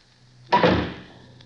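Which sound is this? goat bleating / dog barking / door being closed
door being closed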